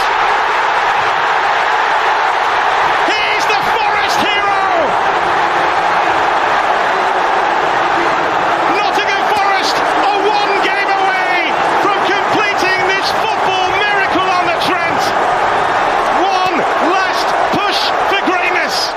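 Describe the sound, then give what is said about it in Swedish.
A dense, roaring football stadium crowd at City Ground cheers continuously as Nottingham Forest win a penalty shootout against Sheffield United, with shouts and whoops rising out of the steady wall of voices, loud throughout. “Men frågan är om gårdagskvällens största jubel ändå inte var på City Ground.”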